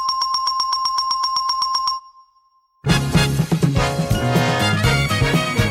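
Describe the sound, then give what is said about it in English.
A doorbell, chosen from many tested at a hardware store and used for correct answers on the TV game show The Price is Right, rings in a quick, steady burst of bright, high repeated dings for about two seconds, then cuts off; after a short silence, loud busy music bursts in. “And for the correct answers, Ed went to a hardware store and tested a bunch of different doorbells before recording the perfect option.”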